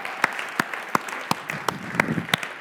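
A crowd applauds the seniors steadily at a gathering, many hands clapping in a dense wash with a few sharper individual claps standing out. It's moderately loud and sustained for the whole stretch, with no voices.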